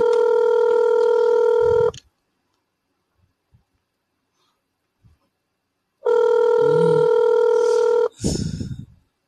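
A phone call rings out: two long, steady electronic ring tones about two seconds each, separated by a few seconds of silence, then a brief burst of noise as the line connects.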